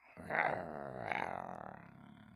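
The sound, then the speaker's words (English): A low, raspy dog-like growl, voiced by a person as Spike the dog, rumbles steadily for about two seconds, swelling slightly near the start and again midway before trailing off. “Spike is a dog.”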